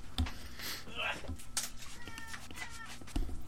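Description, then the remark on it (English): A cat meows several times in short, strained cries over a busy, noisy background with a voice or two murmuring underneath. “I have to go murder a cat.”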